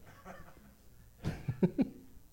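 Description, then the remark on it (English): An audience member lets out a single abrupt sneeze against a quiet background murmur, followed by a few short, breathy bursts that sound like coughs or stifled laughs. “Sneezing audience member.”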